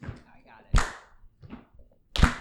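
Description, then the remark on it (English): A few sharp percussive hits in a slow alternating rhythm, loud claps with a softer thumping stomp between them, with faint murmuring underneath; people stomping and clapping the rhythm of a stomp-clap song. “You'd have to stomp and clap.”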